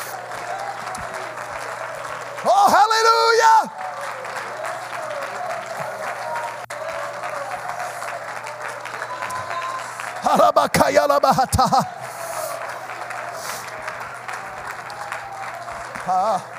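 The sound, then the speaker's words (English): An audience claps hands unto the Lord in praise, sustained, dense applause throughout, with loud shouted exclamations of praise rising over it twice. “Clap your hands unto the Lord right now and give him praise.”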